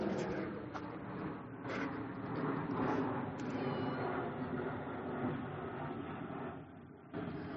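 A fire truck rolls past with a loud, steady engine rumble and broad mechanical roar that holds for several seconds, dipping briefly before swelling again near the end.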